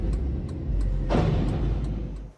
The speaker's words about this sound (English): An Amtrak train from Seattle to Los Angeles hit a utility truck on the tracks in Oakland, California, and the truck driver, he escaped just in time. Have a look at this.